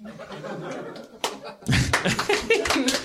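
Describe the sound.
A few sharp, spaced-out claps in a slow, deliberate rhythm, with people talking and laughing loudly over them.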